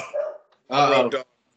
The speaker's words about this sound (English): Hold on a second. I got a dog just barking his ass off.